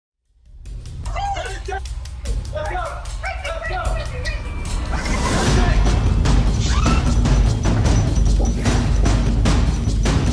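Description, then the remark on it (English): A dog on a walk with a couple in Florida barks in quick, excited bursts amid a noisy, chaotic scene, with people's voices and scuffling sounds growing louder and more confused toward the end. “I came across this video recently of a Florida couple who were out on a walk with their dog, and something surprised.”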